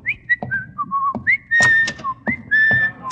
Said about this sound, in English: Whistling in the hall is just the first of a long and distinguished line of violations I've got planned for today.